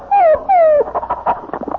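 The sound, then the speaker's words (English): Two drawn-out, high, falling whines from a dog lying under a coffee table, followed by a quick flurry of shorter whimpering and snuffling sounds, loud. “Oh, we have a dog now.”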